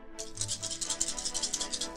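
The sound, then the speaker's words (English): Newly added dice rattle as they are rolled for an intelligence and investigation roll, a steady stream of rapid, bright clicks that last about two seconds, with no one speaking over the clatter. “Let's pick up the new dice I just put in.”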